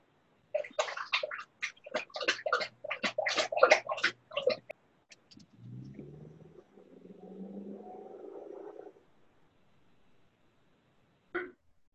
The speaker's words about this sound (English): Sorry, my dog was slurping up a bunch of water, making some noise. Oh, that's what it was. I had to mute it.